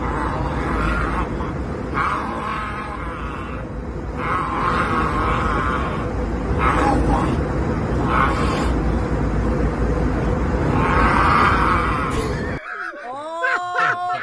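A man growls loudly and raspily for about twelve seconds in rough, surging bursts, harsh and throaty with rising and falling strain, before it cuts off and a voice speaks briefly.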